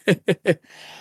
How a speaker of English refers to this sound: Coughing some more. Sorry.